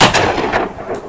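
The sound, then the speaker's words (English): A loud gunshot from a just-reassembled gun, fired again after its caught spring was fixed, cracks out at once, followed by a rumbling tail and two softer, sharp bursts trailing after it. No one speaks. “He reassembles the gun, and then he fires again.”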